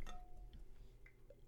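Someone drinks water: a bright clink of a glass at the start, then quiet sipping and swallowing sounds over a low background hum, with no talking.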